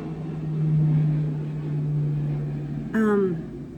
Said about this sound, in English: Let's wait for that airplane.